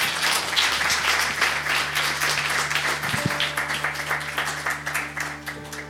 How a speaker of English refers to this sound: And I suggest that we thank our panelists with a round of applause. So, thank you very much.